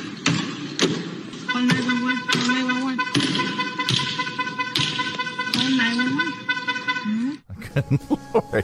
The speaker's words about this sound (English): A vandal in San Francisco attacked one of those self-driving cruise cars with a hammer. Here's some of the footage from someone living in apartments above where the incident took place.